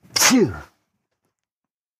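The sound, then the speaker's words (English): A single loud sneeze, a sharp breathy burst with a voiced edge that cuts off quickly, followed by silence. “Gesundheit.”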